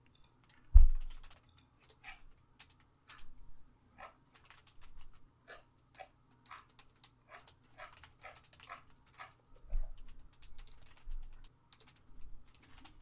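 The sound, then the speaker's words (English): Touch typing on a computer keyboard, with a microphone and pop filter right in front of the typist's face: bursts of rapid, uneven key clicks close to the microphone, broken by short pauses and a couple of dull low thumps, with no talking. “So having this microphone right in front of my face is forcing me to really practice at my touch typing skills.”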